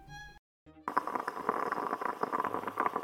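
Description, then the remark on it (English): A short musical tone and a brief pause, then a fresh pot of Christmas-blend coffee brewing with a steady bubbling and gurgling that continues to the end. “Ah, yeah, this is my grandmother's famous Christmas blend of coffee. Ooh, a fresh pot.”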